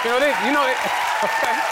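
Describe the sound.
An audience claps steadily, a dense, sustained patter that stays fairly loud throughout, with voices calling and cheering over the applause.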